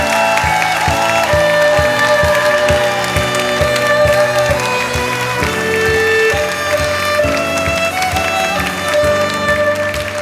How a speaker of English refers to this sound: People of God, hundreds of miracles. Receive it. Clap your hands and take it.